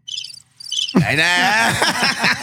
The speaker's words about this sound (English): And I thought you were going to talk. And then there was crickets.